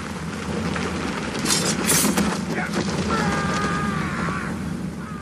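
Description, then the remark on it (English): A heavy storm roars steadily, with dense rain hiss and a deep rumble of thunder beneath, plus a brief whistling gust of wind partway through. “What kind of an ironborn loses his senses during a storm?”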